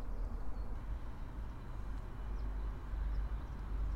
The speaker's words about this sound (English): So you can hear the slight hissing of the BOC. It's like that. Yeah. They'll have works there doing various gas-related works where they'll just suck in air and separate out oxygen from nitrogen and carbon dioxide and bottle them up separately for us